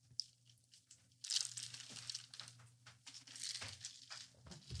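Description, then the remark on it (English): Crisp crunching as someone bites into a snack and chews, a run of irregular crackly bursts over a steady low hum, with no talking. “Well, I'm going to take a sip. Then I'm going to take a bite.”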